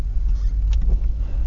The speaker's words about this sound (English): Might be a bit of skidding and spinning the wheels here because it is quite snowy. Yeah, I thought so. You can hear that. That's the car not really grabbing.